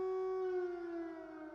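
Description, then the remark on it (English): An air raid siren in Kyiv holds a loud, steady wailing tone rich in overtones, its pitch sagging slightly toward the end. No voices are heard. “So in that sense, you can go about your daily life, but of course the siren could go off whenever.”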